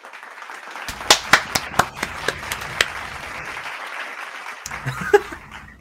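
A festive confetti sound effect: several sharp pops like party poppers burst over a steady wash of crowd cheering and applause, loud, fading out briefly before a last pop.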